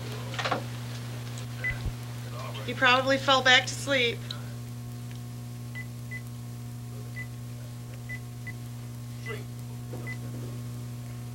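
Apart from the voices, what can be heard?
telephone keypad dialing tones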